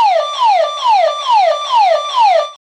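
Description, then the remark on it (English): A burglar alarm blares, a loud, shrill electronic tone sweeping downward over and over in quick, even cycles, about five or six in all, with no voices, then stops abruptly. “Burglar alarm! That's what's the matter!”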